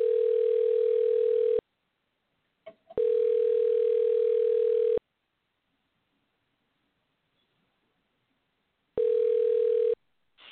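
A steady telephone ringback tone on an outgoing call sounds in long bursts, about two seconds each, separated by silent gaps, with a brief faint click between the first two rings. Clear, no talking.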